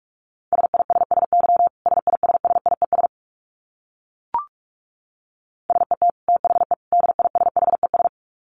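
Fast Morse code beeps at 45 words per minute on a single steady mid-pitched tone, keyed in two rapid runs of dits and dahs separated by a pause with a brief click in between.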